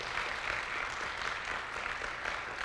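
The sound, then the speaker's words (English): A crowd breaks into steady, sustained applause, a dense wash of many hands clapping at once that holds evenly for a few seconds with no voices over it. “Let's give the Lord a good round of applause.”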